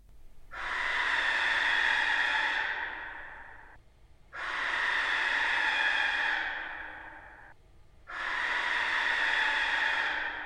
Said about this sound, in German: So I decided to reverse the method and slow down the barn owl to see where that would take me.